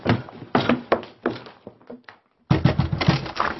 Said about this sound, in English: It's no good trying the connecting door, Lawrence. It's locked.